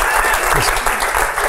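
audience applause

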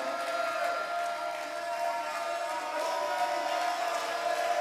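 audience cheering and applauding

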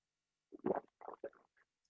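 gulping water

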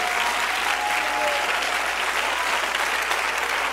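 audience clapping hands

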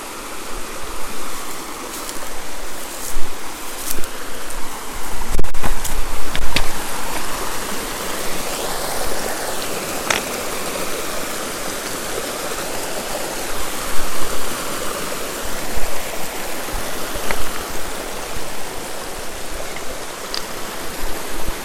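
creek water flowing

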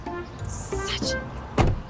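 door slamming

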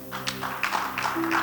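audience clapping

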